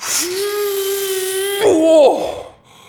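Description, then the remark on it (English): A voice imitates a wolf huffing and puffing to try to blow a brick house in: a long, strained, steady-pitched blow with breathy hiss, then a loud gusty burst that slides down in pitch and trails off. “Just want to let you know, I'm gonna huff, and I'm gonna puff, and I'm gonna try to blow your house in.”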